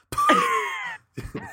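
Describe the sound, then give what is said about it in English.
A voice imitates a hot chocolate vending machine sputtering chocolate powder into a cup: one long, strained, groaning vocal sound, a brief pause, then two short, choppy coughing bursts, fairly loud. “and then the cup would come out like hospital hot chocolate, and it would dribble some like milky water into your cup, and I go, it would like cough, cough this chocolate powder onto the top.”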